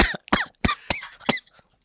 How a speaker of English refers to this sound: I'm going to keep that coughing in character.